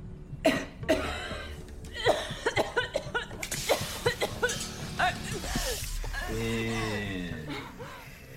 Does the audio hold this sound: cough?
yes